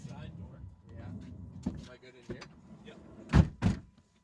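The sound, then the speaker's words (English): A van's side door slides along and shuts, ending in two heavy thuds after a few seconds of quieter rumbling and movement, with faint voices in the background. “In the side door.”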